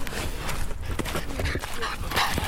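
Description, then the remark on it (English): A puppy makes a few short, scrappy noises, little yips and snuffly sounds scattered over a couple of seconds against a busy, rustling background. “And hey, puppy.”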